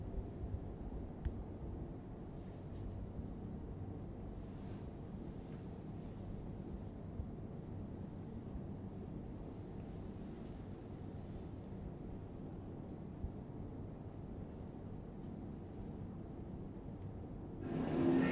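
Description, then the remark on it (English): Ambience aboard a ship: a steady, low droning rumble with a wash of wind-like noise, unbroken for the whole stretch, with a brief louder swell right at the end. No one speaks. “Would somebody be able to tell us the name of the ship we're aboard, please?”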